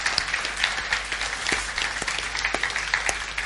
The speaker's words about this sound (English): Would you clap and encourage the three of them?